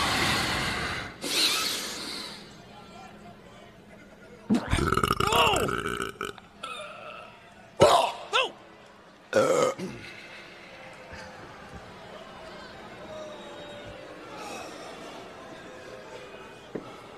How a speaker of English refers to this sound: Sick. But I can beat that burp. I can beat that burp. It's your last shot. Make the most of it.